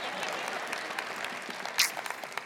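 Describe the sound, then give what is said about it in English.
A crowd applauds steadily, a dense patter of many hands clapping at an even, moderate level, with one sharper bright burst partway through before the clapping carries on. “Well, the crowds are wild here, folks.”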